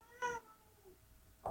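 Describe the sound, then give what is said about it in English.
A cat lets out a short, clear meow, followed by a quiet pause and the start of another louder cry at the very end. No one speaks. “Apparently, that they yells at the cat every time cat makes noises.”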